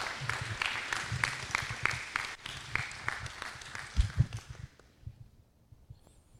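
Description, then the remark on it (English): An audience applauds with a dense, steady wash of clapping that carries on for several seconds, then thins and fades away toward the end, giving a round of applause to a ministry family as they come up to share. “So let's give them a round of applause as they come up and share of the work God is doing.”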